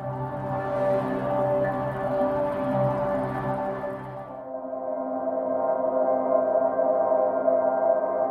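A stretched-out, steady drone made from water filling a local lock at Shepperton, with layered humming tones and a gentle swirling texture; about halfway through it turns darker and smoother. No talking.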